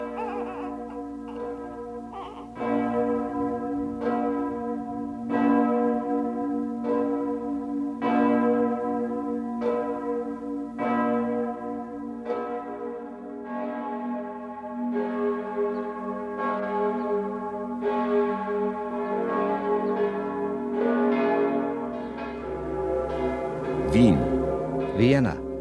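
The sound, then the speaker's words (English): The great bell of St. Stephen's cathedral, cast from cannons, tolls in slow, regular strokes, each deep, resonant clang ringing out with long overtones that overlap and hum between strikes, loud and steady throughout. “Great bell of St. Stephen's, cast from cannons.”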